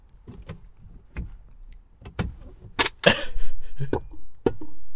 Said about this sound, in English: That was what I'm doing now, that's the top of a coffee cup, like a plastic coffee lid.